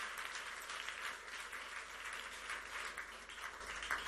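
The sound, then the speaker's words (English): A crowd claps their hands together to bless the Lord in sustained, dense applause, a steady wash of many hands without pauses, moderately loud. “Clap your hands and bless the Lord.”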